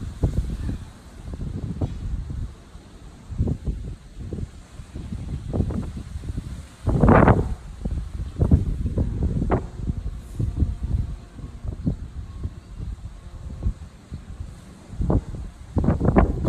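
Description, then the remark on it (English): Gusty wind buffets the microphone and rushes through the leaves of a backyard tree at home on a windy day, with a steady rustle broken by repeated low rumbling bursts as gusts rise and fall. No voices are heard. “I want you to look at a short video I took of one of our trees in our backyard at home. So this is on a windy day.”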